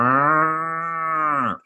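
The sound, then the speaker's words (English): A person imitates a cow in a mock Italian perfume advert with one long, steady, droning moo lasting over a second, loud, ending with a quick drop-off. No other sounds accompany it. “So you're not expecting to hear a rooster or a cow in a perfume advert.”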